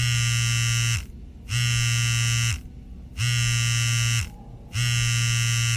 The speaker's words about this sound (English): Oh, your phone. Who else could be texting you?